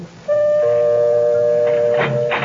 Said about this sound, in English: I came up the walk and rang the doorbell.